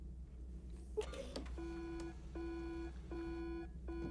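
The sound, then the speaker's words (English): In the film Gattaca, a urine sample testing machine sounds a loud electronic alarm after a brief clatter, repeating steady harmonic beeps in a regular rhythm, each tone held about half a second with short gaps, over a low background hum, flagging a hot sample. “My God, what's wrong with the machine? There's nothing wrong with the machine. It's a hot sample.”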